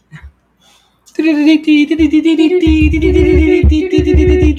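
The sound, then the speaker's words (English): A loud news-style intro jingle, a sound effect from Restream introducing a Nerd News segment, bursts in after a brief quiet moment, with a sustained bright synth tone over driving, pulsing bass beats that keep going to the end. “Trust me, we've been to the sound effects on Restream, and this is the best one we found.”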